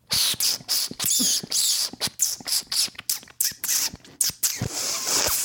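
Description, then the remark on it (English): A comedian's voice imitates a front door opening as a sound effect: a fairly loud run of breathy, scratchy bursts and creaking hisses, stuttering in quick irregular pulses for several seconds with no spoken words. “Because so I woke up this morning and I walked to the front door.”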